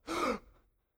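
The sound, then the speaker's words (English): A person demonstrates a sharp gasp for air, a quick breathy intake that rises and cuts off within half a second, heard alone with a faint trailing exhale. “They all gasp for air when I bring them up out of the water.”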